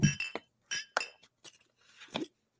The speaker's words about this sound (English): Don't ever cheers again with me, dude, with water, okay?